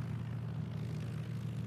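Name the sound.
propeller airplane engine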